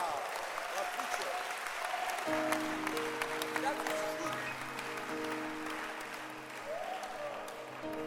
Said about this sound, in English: Clap your hands for mothers.